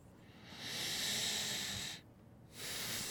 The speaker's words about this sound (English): Mm-hmm. Just a lot of deep breathing.